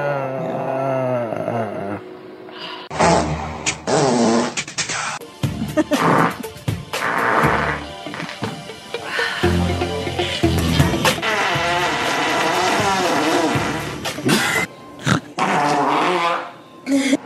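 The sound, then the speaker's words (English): A rapid string of loud, raspy fart sounds made by girls, some drawn out and droning, others short sputtering bursts, packed together with only brief pauses between them. “These girls can fart with the best of them.”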